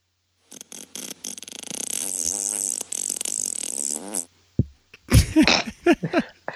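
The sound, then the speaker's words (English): A long, buzzy, wavering fart sound effect, 'Silly Farts' from soundbible.com, played as a segment transition, stretches for several seconds, sputtering and pitch-bending, followed by a burst of laughter and quick chatter. “And it was the sound effect Silly Farts, which is the very first one, which means maybe it's the most popular.”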